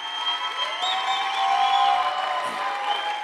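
A crowd claps steadily and cheers as City First Leadership College students come up on stage at their graduation, with scattered whoops and shouts rising over a dense, even wash of applause that holds at a fairly loud level throughout.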